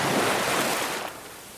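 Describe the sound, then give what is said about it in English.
Ocean waves crash against the shore in a broad, hissing rush of surf that swells loudly, then drains away and softens over a second or so. There is no talking. “Now imagine the waves of the ocean crashing against the shore in perfect rhythm.”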